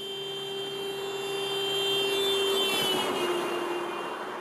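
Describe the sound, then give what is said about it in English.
A car horn blares steadily as a car drives past on a street, its tone dropping in pitch midway as it goes by (Doppler effect), with road noise swelling and fading. No one speaks. “The classic example of this is if you are standing on the street and someone leans on the horn as they go past.”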